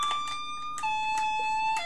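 A short jingle on an electronic keyboard: a steady, bright synth tone steps down in pitch partway through, punctuated by a few regular percussive hits, with no talking.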